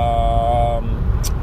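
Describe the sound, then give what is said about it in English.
A steady, low rumble of road and wind noise fills the inside of a moving car with the windows up on a windy day, with a faint tonal hum early on and a brief hiss near the end. “I'm in the car right now, so please excuse if there's any noise. I got the windows up, but it's kind of windy out there, so there is some noise happening.”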